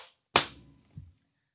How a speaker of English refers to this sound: Okay, wait, let's just clap too okay.